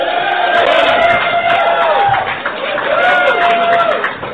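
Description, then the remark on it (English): A large crowd cheers and claps loudly and steadily at a mention of a shot of Jaeger, with shouts and rising whoops rippling through the noise before it dips briefly and swells again. “You're the only people who applaud Jaeger.”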